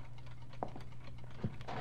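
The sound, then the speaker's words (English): Several clocks tick softly in a pawn shop at 517 Slack Street, their faint, uneven clicks overlapping against a steady low hum, with no voices present. “Lots of clocks that ticked off little punctuation marks into the silence.”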